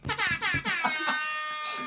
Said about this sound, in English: All right, wait, I gotta tell this story about the air horn. Because first of all, it's the rap air horn. Everybody knows it.